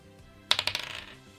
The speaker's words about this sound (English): That is a 18 on the dice, so 18 plus 8 to hit.